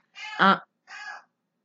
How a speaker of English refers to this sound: And then, can that bird shut up? Because I'll kill her. Just kidding. I wouldn't kill Gina.